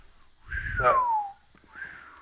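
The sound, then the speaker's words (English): A person wearing a mask whistles a single descending note that slides down in pitch, followed by a shorter, softer whistled note, with some breathy noise underneath. “I can't whistle in a mask.”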